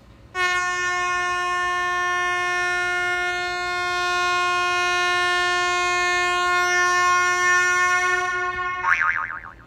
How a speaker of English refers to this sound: It's not easy me doing anything under a minute. Give me a honk to that.